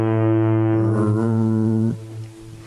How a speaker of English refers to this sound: Lay down the fog or turn off the foghorn. You're not going to run into land.